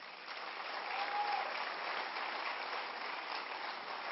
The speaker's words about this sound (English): And I know you all applauded, but I think you got to do it on your feet.